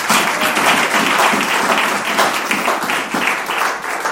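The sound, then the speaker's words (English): An audience claps together in sustained applause for a couple's 26th wedding anniversary, a dense, steady wash of many hands lasting the whole stretch, loud and even with slight rhythmic swells. “I think you can clap better than that.”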